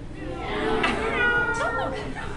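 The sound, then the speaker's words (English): Several voices together mimic a cat's meow, a drawn-out, wavering mew rising and falling over about two seconds, fairly loud, with no words spoken. “What sound does a cat make?”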